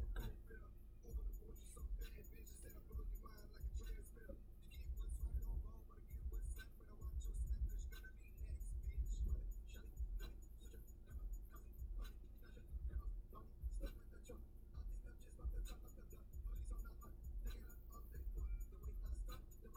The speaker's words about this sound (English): My car's making a noise. What? Your car's breaking down, dude.